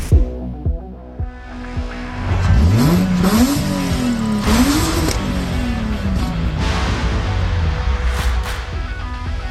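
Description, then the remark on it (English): A flat-six Subaru car engine idles briefly, then revs up hard, its pitch sweeping up and down in a couple of loud surges before settling into a steady, throaty drone. No talking. “those car sounds, courtesy of OBD1 Kenobi, friend of the show, flat six Subaru noises, of all things”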